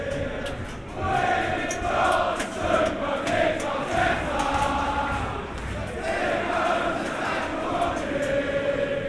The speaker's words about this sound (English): And if you think that tunnel sounds good, the concourse of Block 25 cranks it up even more. For the younger element in the crowd, it's like being in a mosh pit, jumping, sweating, singing hearts out.